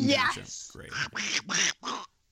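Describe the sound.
A voice sings in a raspy, quacking Donald Duck impression, a short melodic phrase of about five buzzy syllables, fairly loud, then stops.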